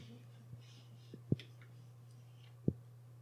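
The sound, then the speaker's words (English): A lighter clicks a few times at uneven intervals to relight a pipe, two sharper clicks standing out, against a steady low hum with no talking. “Yeah, you got to relight it.”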